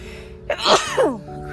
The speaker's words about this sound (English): Okay. Hopefully that's the only sneeze for this episode.